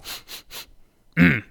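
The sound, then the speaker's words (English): A man suspiciously sniffs the air around another person: three quick sniffs in a steady rhythm, followed after a short pause by a brief voiced grunt. “Smells like you were hungry, says Ed as he sniffs the air around Riley suspiciously”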